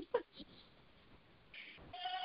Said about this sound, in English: Sorry, my goat was in the background. She's losing her mind.